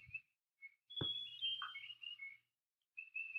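Birds chirping outdoors: a few short, high-pitched whistled calls and trills come in bursts with brief pauses, joined by a sharp click partway through. The calls are faint, and no one speaks.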